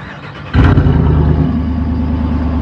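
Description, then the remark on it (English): A Jeep engine cranks and catches with a sudden loud burst, then settles into a deep, steady exhaust rumble. No one speaks. “I wanted you guys to hear this thing start up from the exhaust.”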